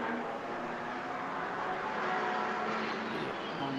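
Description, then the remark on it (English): A race car's engine roars steadily and loudly for the whole stretch during a TCR touring car race, a dense, even mechanical drone with no voices over it and no clear rise or fall of a pass. “Car continuing on its way.”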